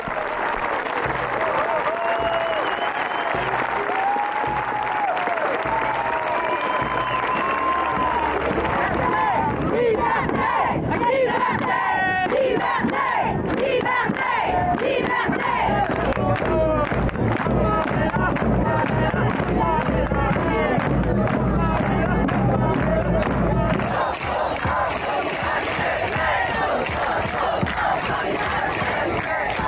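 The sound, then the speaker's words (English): A large crowd at a protest march chants and shouts in loud, continuous waves, with bursts of clapping and cheering mixed in throughout; the march is heading to the Abraham Field. Near the end a steady high-pitched tone or whistle joins the din. “This protest will have a march until like the Abraham Field, so we'll follow it.”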